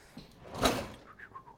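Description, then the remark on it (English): A kitchen drawer slides open with one rushing, scraping pull at moderate volume, followed by a few faint, brief rattles as things inside are shifted around while someone searches for a whisk during cooking. “Don't cut yourself in that drawer.”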